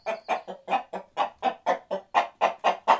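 A hen clucks rapidly and steadily, about a dozen sharp, evenly spaced clucks in quick succession, fairly loud with no voices or other sounds around them.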